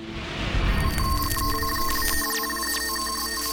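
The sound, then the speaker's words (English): A telephone rings with bright, trilling electronic tones over a low background rumble, steady, with no voices; an incoming call from an agent. “Probably a couple of years before I retired, 3 or 4 years, I get a phone call from an agent that I respect very much.”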